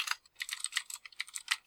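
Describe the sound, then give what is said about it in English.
Rapid keyboard typing, a quick irregular patter of clicky keystrokes, with no voices during the burst. “You're going to hear me just typing all the time now.”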